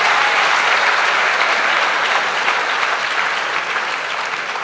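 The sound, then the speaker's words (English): Sustained audience applause, a dense, even wash of many hands clapping at steady loudness for several seconds, tapering only slightly toward the end, with no voices. “I think these three people have made a deal. Every question we ask, please applaud.”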